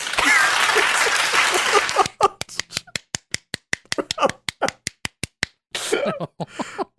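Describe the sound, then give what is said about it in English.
A loud wash of noisy clatter gives way to a run of sharp, close hand claps in a fast, steady rhythm for several seconds, then voices start talking excitedly. “Clap if you think she should suffer.”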